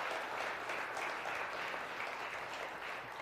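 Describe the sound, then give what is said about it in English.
Steady applause from an audience fills the whole stretch, a dense, even wash of many hands clapping at once with no voices over it. “You don't have to clap.”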